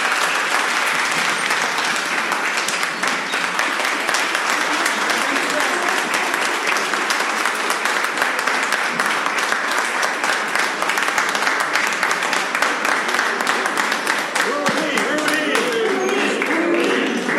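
An audience at DevOps Days Cuba applauds steadily for about seventeen seconds to thank a man for his work on Belgian and Cuban cooperation, a dense, even wash of many hands clapping at a constant loud level with no voices standing out.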